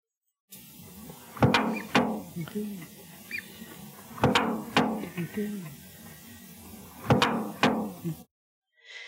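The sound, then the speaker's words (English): A duck imitates a car door slamming, producing three pairs of sharp, loud, bang-like slams spaced a few seconds apart, with low grunting, murmuring vocal sounds in between. “And this is his car door slamming imitation.”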